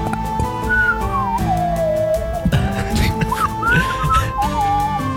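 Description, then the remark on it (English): Someone whistles a wavering, sliding tune for several seconds, the pitch gliding up and down over a dense, busy background of other sounds. “did you just want to take a whistle break?”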